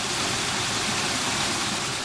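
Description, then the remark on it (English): Heavy rain runoff rushes along Elmer Avenue, a street re-engineered by the Watershed Council, in its first heavy rains since the work: a steady, dense hiss of flowing water, loud and unbroken for the whole two seconds, with no voices. “These were the first heavy rains to fall on the re-engineered street.”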